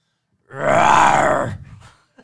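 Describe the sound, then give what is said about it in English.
A person's voice imitates a tiger roar, the sound of their school's tiger mascot in Arkansas: one loud, sustained, gravelly growl lasting about a second, rising then trailing off into a breathy rumble. No words are spoken. “So you want me to give you my give me my tiger roar?”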